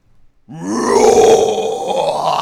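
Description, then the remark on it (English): A single voice imitates a death metal growl as an example of the backing vocals sung for a band: a rough, raspy, sustained roar held for about two seconds, loud and gritty with a low, guttural edge, with no other talking. “And I'm talking, this is like death metal.”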